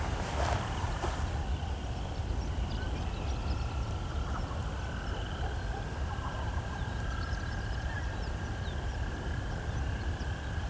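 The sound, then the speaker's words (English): A steady chorus of chorus frogs calls continuously, with sustained trilling bands over a constant low rumble, joined by occasional faint chirps of horned larks, outdoors among ditches and banks beside a quarry, in wind; no one speaks. “Of course, we can hear the chorus frogs as well.”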